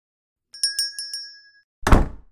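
A small bell jingles with four quick bright strikes and a lingering high ring, then a front door slams shut with a loud, heavy thud that quickly dies away.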